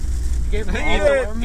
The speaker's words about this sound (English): So you guys get to hear what it's like in rush hour traffic in Raleigh, North Carolina. And it's not pretty. No, it's not.